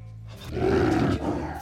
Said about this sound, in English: Goddamn tiger!